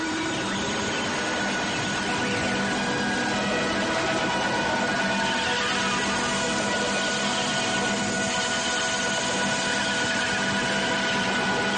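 A recording from a two-disc release of amplifier noise: a dense, unbroken wall of harsh amplifier feedback noise, with several steady whining tones layered over a hissing roar. It stays loud and unchanging throughout, with no voices.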